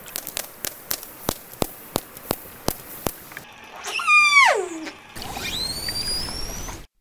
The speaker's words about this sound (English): Yeah, so first you were hearing a few echolocation clicks. And after that, another sound these animals make, and this is definitely in a higher frequency range, right? And last was what's called a whistle.